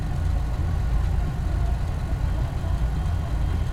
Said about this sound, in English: That's the tow truck, isn't it? Yep.